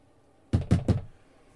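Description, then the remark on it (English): Three firm knocks on a door in quick, even succession, loud, followed by quiet. “Oh, for Christ's sake, just open the door.”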